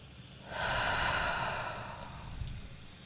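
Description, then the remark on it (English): A deep, airy breath, taken in big and held at the top, released in one long, forceful exhale lasting over a second before fading into quiet. No one speaks. “One more time, take a big breath in. Hold it at the top. Notice how your body feels, and then let it all go in a big exhale.”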